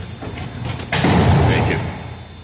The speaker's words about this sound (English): You can close the cell door, guard.